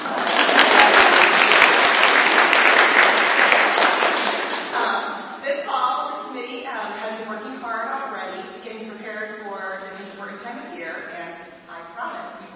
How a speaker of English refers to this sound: We are excited to kick off the 2017 season of stewardship here at Trinity. Hoping for a little applause on that one.